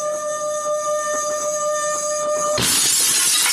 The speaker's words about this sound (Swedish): Så sätter jag glasen nära varandra och sen gnider jag på det andra glaset.